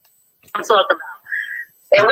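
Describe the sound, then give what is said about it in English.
Muffled, tinny voice over a phone line from a caller, garbled and hollow, the caller's phone or listening device feeding the playback back as an echo of speech, coming in short bursts with a brief whine between them. “Wait, turn down your phone or whatever device you're listening to, because it's coming as an echo.”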